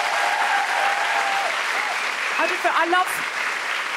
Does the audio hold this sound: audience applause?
yes